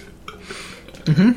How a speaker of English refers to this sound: That was a weak burp. That was a strained burp.